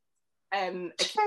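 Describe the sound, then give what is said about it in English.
A single sneeze: a short voiced build-up followed by a sharp, breathy burst, loud and isolated with no talking around it. “Bless you.”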